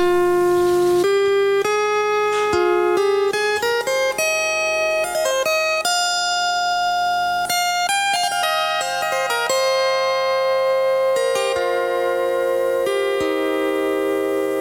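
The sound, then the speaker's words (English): Solo harp playing a flowing Irish-style suite, plucked notes ringing and overlapping at a steady, moderate volume, with no voices throughout. “We're featuring the harp, as I was saying this morning.”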